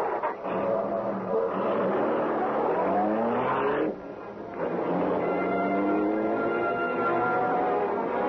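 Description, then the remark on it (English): The Black Beauty, the Green Hornet's car, races through city streets past a trolley car. Its engine roars at high speed, pitch climbing steadily, dropping briefly as it shifts gear, then surging and climbing again. Loud, with no voices. “Cut past that trolley car. We're moving so fast the police will not have a chance to know this is the Black Beauty.”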